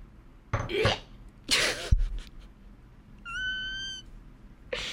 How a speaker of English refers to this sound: That's how my little meows.